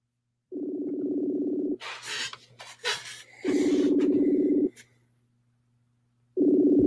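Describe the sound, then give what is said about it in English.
An outgoing phone call rings with no answer: three steady, droning ringback tones, each lasting about a second, with brief rustling and muffled noises in the gaps between them. “Answer the phone, goddammit.”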